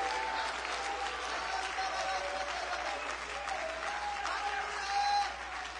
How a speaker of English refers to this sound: Oh, clap your hands again, all you people, and shout unto God.